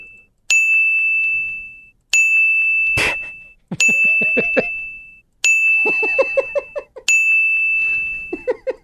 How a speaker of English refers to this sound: Give me 6 bells. 6 bells. Ding.